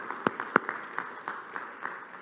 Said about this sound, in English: And I think we need to celebrate what God did through Rainbow's End and what God did through community services. Can we applaud to the Lord for all of those years of ministry?